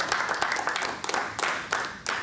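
A crowd breaks into applause, many hands clapping in a dense, steady patter with a few sharper claps standing out, moderately loud and continuous with no talking.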